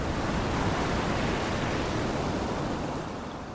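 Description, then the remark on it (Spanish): A steady roar of wind and crashing ocean surf fills the scene, loud and continuous, with a broad rushing wash that eases off slightly toward the end. No voices are present. “El viento y las olas podían burlarse de nosotros como quisieran, zarandeándonos a diestro y a siniestro.”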